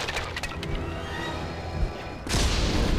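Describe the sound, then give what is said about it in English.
In a video game, a wooden treehouse cracks and splinters as it is crushed and collapses, followed by a loud, sustained rumbling explosion near the end, dense with crackling debris and no voices. “Oh man, he just crushed that treehouse real good, and then exploded it.”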